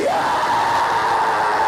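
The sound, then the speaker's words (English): A crowd of voices screams and yells together in one sustained, loud roar, a massed high-pitched cry that holds steady for under two seconds with no clear speech, as an audience answers a call to give the Lord a scream. “Give the Lord a scream.”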